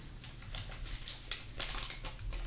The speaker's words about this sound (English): The crinkling of the paper is going to be really good podcast material. You know, you're supposed to crinkle them up in those ways so they don't get stuck together.